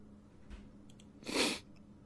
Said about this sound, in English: Sorry. Is that my voice? I was trying not to sneeze. Holy shit. I'm not doing that again. That hurt.